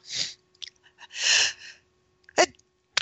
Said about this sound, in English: That was a big sneeze, wasn't it? Sometimes when you internalize them, they're even bigger.